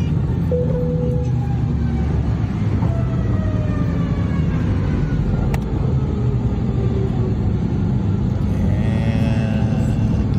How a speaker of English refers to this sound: And he's holding it off, gently lowering it to the runway. Oh, no. Now you hear the scraping right there. And who needs brakes?